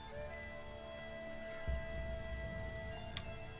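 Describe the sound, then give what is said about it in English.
Steady rain patters on a hard surface at night, a dense continuous wash of drops with a low rumble underneath and a brief sharper tap near the end, no voices. “Nice rainy night like this.”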